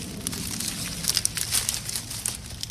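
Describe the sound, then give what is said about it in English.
Dry pea pods rustle and crackle as they are handled, a steady run of brittle crinkling and snapping with no one speaking. “What happens next after this with the peas? Take the snails off.”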